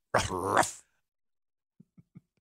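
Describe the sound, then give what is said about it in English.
A dog lets out one loud growling snarl lasting under a second, followed after a pause by three short, soft, low grunts in quick succession. “If we say it and reference it, boom, there it is.”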